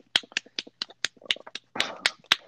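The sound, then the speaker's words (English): Sarcastic hand clapping, imitating Nancy Pelosi clapping at Donald Trump: a quick, slightly uneven run of about a dozen sharp, crisp claps over a couple of seconds, with no voices. “if any of you hoes know what it looks like to clap like Nancy Pelosi at Donald Trump, that's what I'm doing right now.”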